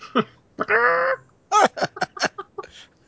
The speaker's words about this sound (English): Is that where we're based this week, Ian? In the chicken coop? Yeah. We're all clucking mad.